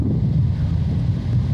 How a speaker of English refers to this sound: Oh, that, I just put my mic near the air conditioning.